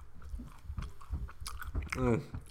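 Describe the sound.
Someone chews a cookie right up against the microphone, with irregular crunchy, wet bites over a couple of seconds and a brief voiced murmur near the end.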